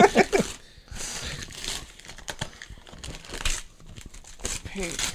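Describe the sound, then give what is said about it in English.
Crinkling and ripping of gift wrapping paper, a run of rustling, tearing bursts over several seconds, with voices talking in the background. “Just rip into it. Open the damn paper.”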